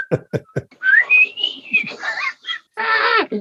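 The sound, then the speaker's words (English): A few quick taps, then a wavering whistle that rises and holds a short tune-like phrase for about a second before breaking off into a brief voiced burst, like a laugh. “I can't even do the whistle part.”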